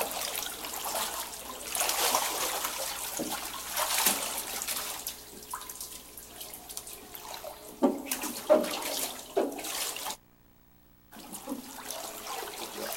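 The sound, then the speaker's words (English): Water splashes and sloshes as a man is immersed for baptism in the name of the Father, the Son and the Holy Ghost, with bursts of rushing, churning water, a few sharper splashes, and a brief silent gap near the end. No one speaks. “In obedience to the command of our Lord and Savior Jesus Christ and upon the profession of his faith in him, we baptize this our brother in the name of the Father and the Son and the Holy Ghost.”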